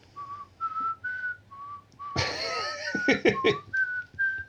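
A penny whistle, played by people as an emperor rides up, plays a simple tune of short, clear, high notes with brief gaps, interrupted midway by a loud burst of noisy clatter before the melody resumes. No one speaks.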